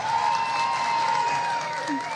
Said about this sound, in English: Can we get a round of applause for Mike Davis?